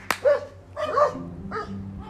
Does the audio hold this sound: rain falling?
no